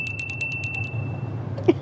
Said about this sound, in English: And we have chickens that are responding to the bell.